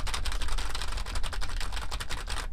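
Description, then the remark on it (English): Rapid, continuous typing on a computer keyboard with dense clicking keystrokes packed closely together, fairly loud, stopping abruptly at the end. No voices. “You want to hear what it sounds like if I would, it was like an office worker and I was like really good at typing.”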